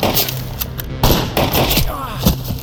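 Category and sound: sound effect, gunshots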